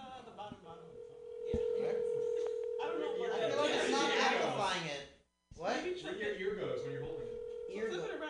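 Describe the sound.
Electronic telephone keypad tones sound as steady, sustained beeps, one long and another later, while several people talk loudly and excitedly over them, as Seth Rogen's phone number is dialed on the Mutiny Radio Show.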